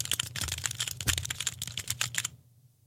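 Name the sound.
mechanical keyboard typing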